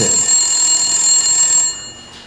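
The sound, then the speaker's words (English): A telephone bell rings once, loud, with a bright metallic jangle that holds for over a second before cutting off and fading into quiet. No one speaks. “You always have to wait for another ring. Wait for the third ring.”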